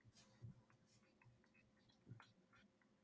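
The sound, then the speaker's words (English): Soft, irregular clicking of keys on a mechanical keyboard as someone tries to type quietly while looking something up, a handful of quiet taps spread out with a couple of slightly louder presses. “I'm trying to type quietly on my super mega mechanical keyboard.”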